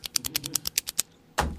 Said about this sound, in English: He just kept clicking the fucking pen. He was he just kept clicking the pen, and I didn't want to say anything. I was like, what do I say? Stop clicking the pen,